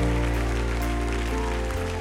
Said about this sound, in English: I bet you if you keep clapping, they'll keep coming.